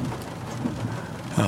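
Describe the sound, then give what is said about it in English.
Steady rain drumming on the roof of a small rented Toyota car outside a place in Point Claire, with the windshield wipers going, a dense hiss with a low rumble underneath and a slight swell near the end. “that lovely, lovely sound of rain on the roof of a car, windshield wiper going.”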